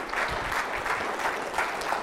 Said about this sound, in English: Go ahead, give God a hand clap, because that's good. God's good.